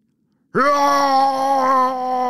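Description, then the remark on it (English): A human voice imitates an abominable snowman jumping out of hiding in bushes to scare someone off: one loud, sustained, steady-pitched groaning bellow that bursts in after a short silence and holds for about two seconds. “Roar!”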